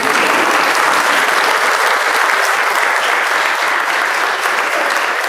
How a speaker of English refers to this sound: This is one of those few occasions where you can clap in traditional worship. Go.